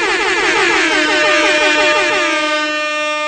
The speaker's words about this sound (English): Air horns aplenty, please.